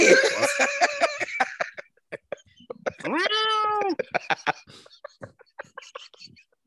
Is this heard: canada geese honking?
no